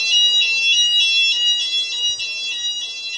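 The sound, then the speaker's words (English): A fire alarm rings continuously, a harsh high-pitched electronic tone pulsing in a rapid steady rhythm, loud, with no voices present, at about five to four in the afternoon on 11 April 2012, having gone off for nearly an hour. “As you can hear, the fire alarm is going off.”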